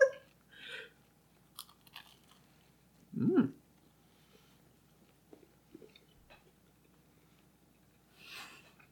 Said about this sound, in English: I'm going to cut the chewing noises.